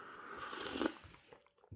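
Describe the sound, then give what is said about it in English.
A quiet, wet slurp as someone sips coffee, a soft airy sucking noise lasting about a second, followed by faint mouth clicks and a brief swallow. No one speaks. “Let me have one more sip, see if I can reverse this trend.”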